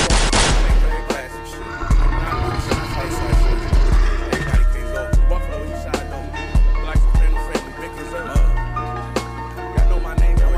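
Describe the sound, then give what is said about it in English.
Loud gunshot sound effects crack repeatedly over a booming music track, sharp bursts landing every second or so, some in quick clusters like rapid fire, with no talking. “See, this type of shit get gunshots.”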